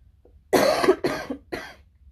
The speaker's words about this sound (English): I might cough a lot during this podcast only because I last week had the flu.